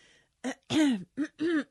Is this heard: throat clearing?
yes